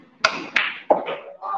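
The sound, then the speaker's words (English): A snooker cue strikes the ball with sharp wooden clicks, three quick knocks each followed by a brief rolling rumble, with some background murmur underneath. “Nice shot.”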